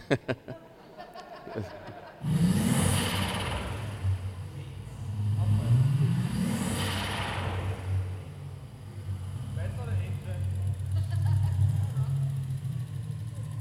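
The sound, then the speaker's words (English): A car engine, started and brought up to temperature, is revved hard several times, climbing quickly to a high, held pitch against the rev limiter before dropping back to idle, with faint voices and chuckling in the background. “But when I was there, when he showed it to me the first time, he first started the engine and then he had to get to a certain temperature. And then he started revving it.”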